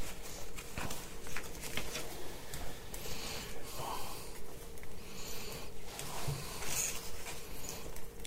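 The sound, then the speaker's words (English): Steady scratching of a pen or pencil writing people's names down on paper, a dense run of short rough strokes lasting several seconds with no one talking. “I just want to write down your name so I know them.”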